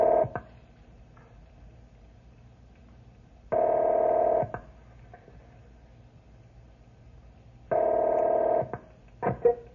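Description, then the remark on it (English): A telephone call being placed to the Forest Creek ranger station: two long, steady, buzzy ring tones sound about four seconds apart over faint line hiss, with a few brief clicks in between. No one speaks. “I'll call the ranger station at Forest Creek and see if they pick this up.”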